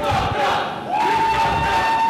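An arena crowd at a wrestling match roars and cheers continuously after a chokeslam, a dense wall of voices with a few higher shouts and whistles rising above the steady din. It stays loud throughout, with a brief dip midway.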